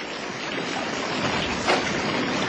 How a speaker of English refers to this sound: Flood water! It's flood water and it's washing the whole site away!